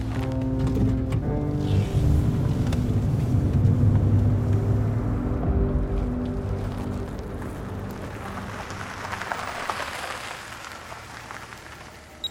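A steady low engine drone and road rumble from inside a moving car, with a constant rain-like hiss over it; continuous and fairly loud, with no one speaking.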